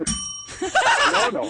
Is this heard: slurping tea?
no